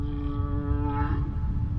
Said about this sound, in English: The male humpback whale's song is one of the longest and most complex of any animal. A single call can last up to 30 minutes.